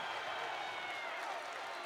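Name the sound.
basketball crowd cheering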